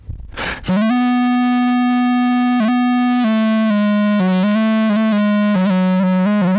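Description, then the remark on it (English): After a quick breathy burst, a pitch-corrected sung voice holds a flat, robotic note with small stepwise shifts, thickened by buzzy distortion and fuzz, loud and upfront. “Now let's add back the distortion and fuzz”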